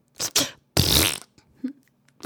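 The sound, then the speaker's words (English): A voice makes a string of wet, sputtering mouth noises imitating farts: two short bursts, a longer loud raspberry, then a few softer blips, with no talking. “Ew, that was a lot of mouth noises.”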